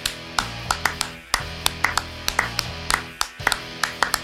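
A crowd in Cincinnati applauds and cheers for fighter Steve Kravitz after his bout, with sharp, irregular hand claps popping out over a steady low background murmur for several seconds, moderately loud.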